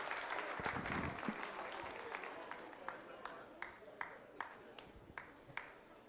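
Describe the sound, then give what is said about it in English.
A church audience breaks into dense applause as the children are welcomed up front for Children's Church; it gradually thins out, ending with a handful of scattered, separate claps spaced about half a second apart. “So as you take your seat, please give Miss Melody a round of applause as we welcome our children up for Children's Church.”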